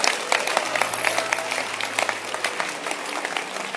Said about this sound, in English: I like your hand clap. It shows that you understand the message.